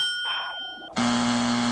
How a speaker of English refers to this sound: And you know who got the ding, and you know who got the buzz.